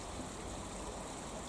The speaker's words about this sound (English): I'm down by a little like waterfall now.